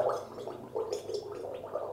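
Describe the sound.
Someone gargles boiling water with a tea bag in the mouth steadily for about two seconds, a wet, bubbling throat rattle that pulses in quick uneven bursts at a fairly strong level, with no talking.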